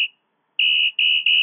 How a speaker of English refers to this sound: Hi, you've reached the voicemail of Johnny Sexton. Leave a message after the whistle.